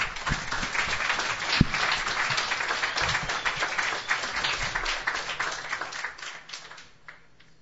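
A crowd applauds steadily for several seconds, welcoming a performer to the stage to open the evening, a dense wash of many hands clapping that stays fairly loud before tapering off toward the end, with a faint voice briefly underneath.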